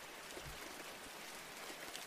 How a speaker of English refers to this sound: You try to focus on the gentle sounds of the rain outside your window.